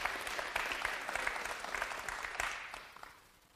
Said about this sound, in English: I mean, beautiful. Yes, we can clap.